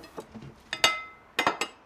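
Dishes and cutlery clink as they are cleared away: a few light taps, then a bright ringing clink, and a quick cluster of three sharp clinks near the end, with no talking.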